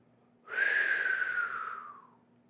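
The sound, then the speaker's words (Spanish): A single rush of wind whistles past for about two seconds as a very fast rabbit runs by at top speed, a breathy whoosh with a tone that slides slowly downward before fading out, heard on its own. “Corría tan rápido que el viento silbaba al pasar.”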